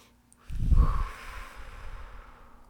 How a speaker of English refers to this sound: What if we did a deep breath right now? Okay. Okay.